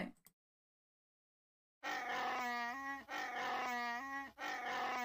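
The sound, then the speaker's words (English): A voice imitates the roar of Chewbacca in three long, harmonic bursts with a rolling, throaty rattle, loud and sustained, following a brief opening blip and a stretch of silence. “It's a little bit like an air horn. But it's got a roll in it.”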